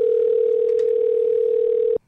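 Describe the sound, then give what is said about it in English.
A steady telephone dial tone, on a phone used to call a contest winner, hums at a constant pitch for about two seconds, loud, then cuts off abruptly. “We're entrusting this to Master Jeff Forche, if you please, Jeffrey. We're going to try and get a hold of our winner.”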